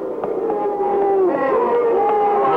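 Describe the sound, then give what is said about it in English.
An angry crowd at a fight in an arena in a large southwestern city jeers, a loud, unbroken wall of wavering boos and howls from many voices that swells slightly midway and carries on without pause. “listen, Tom. Yeah, the citizens are angry.”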